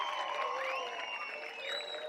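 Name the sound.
applause sound effect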